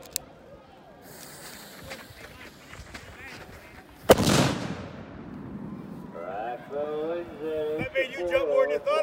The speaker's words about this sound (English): So we're gonna get you an up close and personal look at the cannon going off. And I'm not gonna send my camera person out in danger like I'm gonna do right now for you guys.